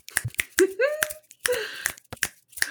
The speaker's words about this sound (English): Oh my god, I got the finger snaps.